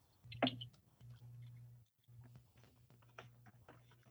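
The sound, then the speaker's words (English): Scattered keyboard clicks tap away at an irregular pace, one sharp louder keystroke early on, all fairly quiet over a steady low electrical hum with no talking. “Oh, lots of typing.”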